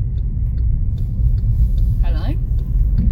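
Steady, heavy low road rumble fills the inside of a moving car, continuous, with a brief higher vocal sound rising over it near the end.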